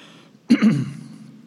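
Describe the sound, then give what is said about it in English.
A single short cough in two quick bursts, fairly loud and harsh, caused by allergies and drainage, during a Sunday school class at a Methodist church in Lawrence, South Carolina, rising out of quiet room tone and trailing off without any talking. “I still have some allergies and drainage, so I'll try not to cough too much.”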